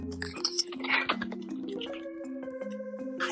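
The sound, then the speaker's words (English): A spinning wheel, spun to pick who goes first among three people, gives off a rapid run of light ticking clicks, fairly quiet, over a steady sustained tone in the background. “So we're gonna be spinning the wheel right here.”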